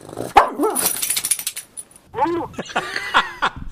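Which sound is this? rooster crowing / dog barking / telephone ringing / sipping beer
dog barking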